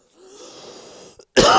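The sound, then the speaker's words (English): A person coughs: a drawn-out wheezy, breathy cough followed after a short pause by one sharp, loud burst. “My apologies for coughing to you guys.”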